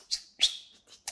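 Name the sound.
imitated whistle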